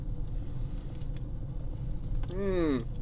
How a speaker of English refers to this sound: It is apparently a classic Mountain Dew and Code Red combo. And I don't have a whole lot of pride, I said I would drink this on air. Let's do this. Get that fizz on the microphone.